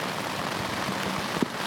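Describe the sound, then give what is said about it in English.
Heavy storm rain pours down in a dense, steady hiss, drumming on a surface, with one brief louder patter near the end and no voices; a big storm with lightning picking up again around a just-pitched tent. “And here it kicks up again, see?”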